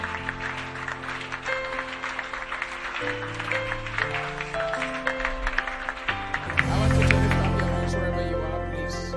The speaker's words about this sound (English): Hey! Wow. Are you clapping or you are not clapping?